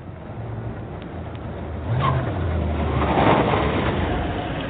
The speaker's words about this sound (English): Quiet in the house on Jennifer Avenue. Outside, a big silver car arrives.